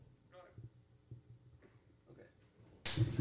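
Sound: slap on the face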